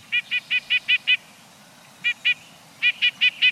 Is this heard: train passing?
no